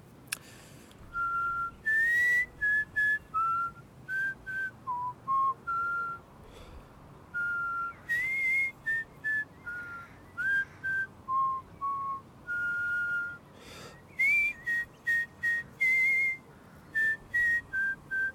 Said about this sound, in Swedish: Vad är det för sång som jag visslar nu?